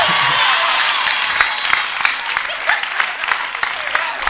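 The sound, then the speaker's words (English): An audience claps steadily, a dense wash of many hands with sharper individual claps popping out, sustained and fairly loud for a few seconds, with faint crowd murmur underneath. “Those who are clapping me, your bank account begin to swell.”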